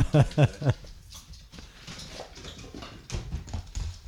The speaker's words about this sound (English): And now the dogs are exiting. Dogs out.